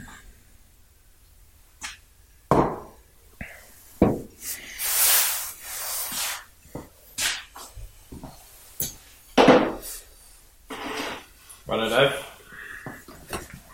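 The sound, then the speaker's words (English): Hoegaarden beer is poured into glasses with a frothy, fizzing hiss, broken up by sharp clinks and knocks of glass and bottle being set down. “I'm pouring the Hoegaarden.”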